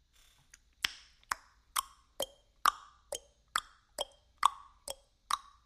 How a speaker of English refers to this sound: You know what that is? Mm-mm. That's time. Ticking, ticking, time keeps on ticking, ticking.